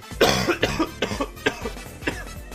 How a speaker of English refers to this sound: And I already know I have to cough. Hold on.